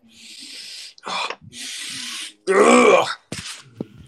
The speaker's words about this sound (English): Ah, god damn it, dude. I keep fucking sneezing.